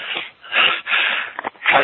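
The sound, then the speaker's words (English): A series of breathy, noisy sneeze bursts, five in quick succession with short gaps between, the middle ones longer and a brief sharp puff near the end, fairly loud with no talking. “Sorry, I'm sneezing.”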